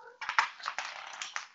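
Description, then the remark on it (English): A marble, found by a cat, rolls across a hard floor with a steady rattling rumble and a few sharp clicks as it bumps along, moderately loud, with no talking. “One of my cats has found a marble.”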